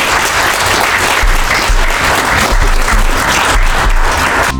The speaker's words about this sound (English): A round of applause for our panel.